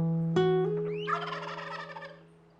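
A wild turkey lets out a loud gobble: a sharp onset followed by a rapid, bubbling rattle that trails off over a couple of seconds, with no talking.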